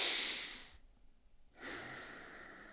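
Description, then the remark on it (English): Airy breathing: a long breath drawn in, a brief quiet pause, then another full breath pushed out, each broad and hissy with no talking over it. “Just inhale, exhale.”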